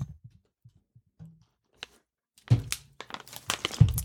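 Drinking glasses clink together in a toast: one sharp tap, then a busy flurry of clattering and crinkly knocks. A few soft low thumps come first, with no talking.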